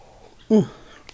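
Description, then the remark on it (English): A single short slurp of hot tea, a quick wet sucking sound that rises and fades in a fraction of a second against quiet room tone. “I'm still slurping away on tea because my voice is still not 100% from my illness over Christmas.”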